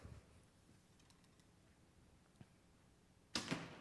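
A quiet pause with faint background hiss, a soft tick partway through, then a sharp, loud thwack near the end as an arrow strikes a target, followed by a brief rattling decay.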